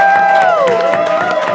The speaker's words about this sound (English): can we get one more big round of applause for Sean and Ollie's for having us here?